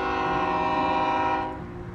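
A loud, sustained train horn blares steadily for about a second and a half at the Englewood rail yard, then cuts off, leaving the low rumble of rail yard activity underneath. No one speaks.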